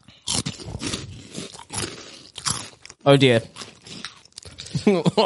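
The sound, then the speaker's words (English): Loud crunching of a crispy puffed snack bought in Australia, several bites and chews in an uneven rhythm, with a man's voice speaking briefly between mouthfuls. “I'm going to munch on a little alien here.”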